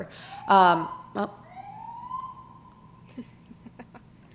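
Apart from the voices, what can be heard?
police car siren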